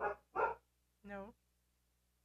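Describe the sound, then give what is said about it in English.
Two quick, sharp barks from a female dog barking at the father of the household, in close succession and moderately loud, followed after a short pause by a brief spoken word from a person. “I don't know, but if you can hear, you probably hear some barking in the background.”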